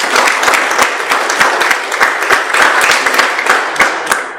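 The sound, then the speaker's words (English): A crowd applauds steadily, many hands clapping at once in a dense, crackling wash of sound with sharper individual claps popping through, sustained at a fairly loud, even level before easing slightly at the end. “You can applaud.”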